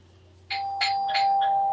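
A doorbell rings with a bright electronic chime, several ringing tones repeating in quick succession over a steady sustained hum, with no talking.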